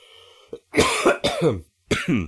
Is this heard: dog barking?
no